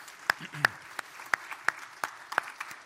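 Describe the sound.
Applause made of sparse, evenly spaced handclaps, roughly three per second, crisp and moderately loud over a faint background murmur of voices, given for the children and adult volunteers before a sermon reading.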